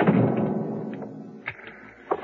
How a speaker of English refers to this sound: I'll close the door.